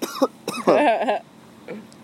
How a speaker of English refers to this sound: Alright, let's see who coughs the most on this episode.